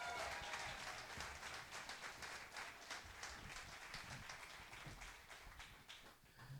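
An audience at a morning revival service applauds the pastor's wife steadily, a dense wash of many hands clapping at a fairly even loudness throughout, with no voices standing out above it.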